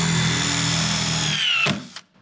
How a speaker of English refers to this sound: We're just going to screw on this little wheel. Here's a drill. You grab it, you fit it into the top of the screw, and I'll just hold it steady for you, and you go ahead and squeeze the trigger.